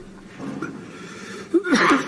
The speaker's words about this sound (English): He said terrible headache, but it was terrible coughing. Do headaches cause coughing? Not really.